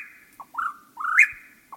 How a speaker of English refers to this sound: After dark, when most birds are asleep, a few break into song, like this whippoorwill.